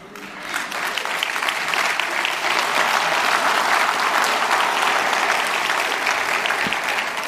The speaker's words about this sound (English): All 3 hours, same response. Spontaneous applause as soon as they heard that.